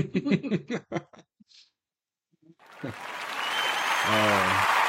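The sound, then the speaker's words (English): A brief bit of talking and a short pause, then a crowd bursts into applause that swells and keeps going loudly to the end, with a voice briefly calling out over the clapping. “Stop clapping here in just a minute.”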